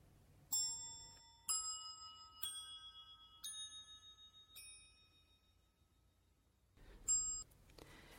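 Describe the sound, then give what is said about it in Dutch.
A bell tree, small bells stacked from smallest at the bottom to largest at the top, is struck with very thin rods, about six separate bright metallic strikes, each ringing out with high shimmering overtones that slowly fade, with a pause before the final strike. “het is een bellenboom. Het zijn allemaal belletjes bovenop elkaar geformeerd, van klein naar groot.”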